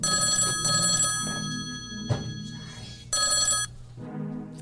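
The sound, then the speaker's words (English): A telephone rings with an incoming call during a live show, in bright, trilling bursts separated by a short pause, fairly loud over a low background rumble, with a single dull thump in between. “Well, now we got a phone call.”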